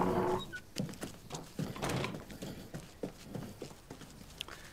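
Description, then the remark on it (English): A racehorse's hooves clip-clop in a steady walking rhythm, each hoofbeat a sharp knock with soft ambient noise between, preceded by a brief tonal whinny-like sound at the start. “It's about that horse, Teddy.”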